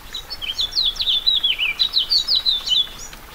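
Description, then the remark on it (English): A house finch sings a quick, jumbled stream of sweet warbling and twittering notes, clear over the soft, steady hiss of light April rain falling in the Anza Borrego Desert in southeast California. “Cacti and wildflowers glisten with raindrops, and birds begin to sing.”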